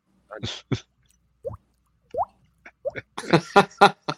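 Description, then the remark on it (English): A voice imitates slow water dripping, like Japanese water torture, with a series of separate plopping mouth sounds, spaced out at first and then bunching into a quicker, louder burst of drips at the end. “The water torture slowly dropping.”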